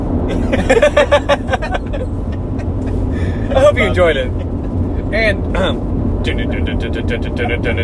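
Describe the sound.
Steady low road rumble and engine drone fill a car's cabin as it drives at about 76 miles an hour on I-64 West towards Raleigh at night under overcast skies in light traffic, constant throughout, with a person speaking briefly over the noise.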